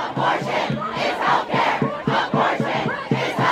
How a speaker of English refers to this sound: As the news spread, a crowd started to form outside the Supreme Court.